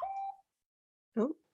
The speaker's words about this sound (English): Oh. That's your special ringtone. You have a special ringtone. Do I? Yeah, you have a unique ringtone.